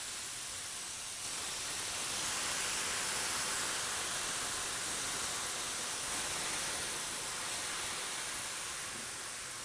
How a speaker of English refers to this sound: Just be careful, because when you're putting water into something hot, it will splatter. Don't burn yourself.